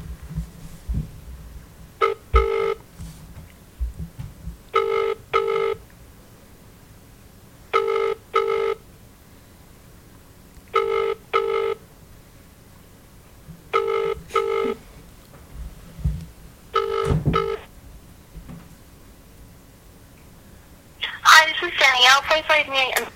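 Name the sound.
outgoing phone call ringing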